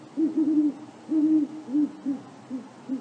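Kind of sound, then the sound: bird, great horned owl hooting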